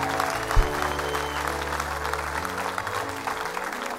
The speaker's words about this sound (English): Give these people a great big clap offering. Amen.